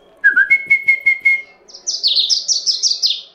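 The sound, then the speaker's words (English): Small caged birds chirp: a steady whistled note with rapid pulsed tweets, then a quick rising-and-falling run of bright, high chirps. No one speaks. “I just look inside of a mind like I look inside one of these bird cages.”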